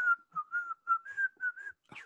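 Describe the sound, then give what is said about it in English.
A person whistles a short melodic tune, a run of about eight clear, bright notes with slight pitch changes, ending with a brief breathy rustle. “he used to whistle. I forgot the name of the song. It's like that.”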